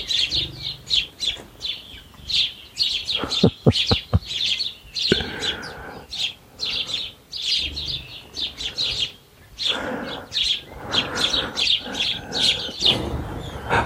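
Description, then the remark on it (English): Lots of small garden birds at a feeder chirp and twitter in a busy, overlapping chorus, with a brief flurry of wingbeats midway as some fly off when a person walks past. No one speaks. “Gosh, they've all just taken off as I walk past.”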